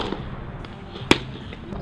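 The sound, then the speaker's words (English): A single sharp, loud pop of a baseball smacking into a catcher's mitt cuts through a steady wash of crowd murmur. “The pop of a catcher's glove.”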